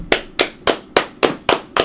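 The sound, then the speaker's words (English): Seven sharp, evenly spaced hand claps in a steady rhythm, fairly loud, like one person applauding on their own with no talking. “They're all applauding me right now.”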